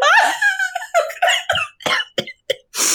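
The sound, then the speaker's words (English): High, squeaky wheezing laughter breaks into a string of short, sharp coughs and gasps from laughing hard, loud, with brief pauses between bursts. “I'm sorry to make you laugh so hard you're coughing.”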